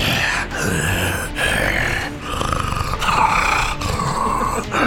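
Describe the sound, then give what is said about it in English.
A voice imitates the ragged, labored breathing of a creature bleeding out, a steady series of heavy, raspy, growling breaths with brief pauses between them, loud, like a creature struggling for air. “Belabored breathing. Bleeding out.”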